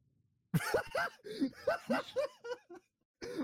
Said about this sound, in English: I'm choking on water over here. I'm trying to clear my throat so bad. You should be fine with choking on water, bro.